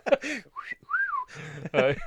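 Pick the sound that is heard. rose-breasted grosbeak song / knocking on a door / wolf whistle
wolf whistle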